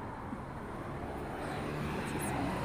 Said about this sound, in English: But Rogers Park, Chicago. The noise and noise. There's cars going by.